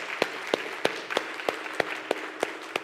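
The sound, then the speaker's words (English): Audience applause at a Christian service, a round of applause for God: a steady wash of many hands clapping, with sharp, evenly spaced claps standing out in a quick regular rhythm about three times a second, moderately loud and without voices. “Can we just have a round of applause for God and thank God for allowing us to be here?”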